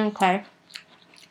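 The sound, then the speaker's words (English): A short muffled voice, followed by a few soft, wet chewing sounds, quiet and irregular, as a mouthful of two Oreo cookies eaten at once is chewed. “Now I'm chewing it more. It's becoming okay.”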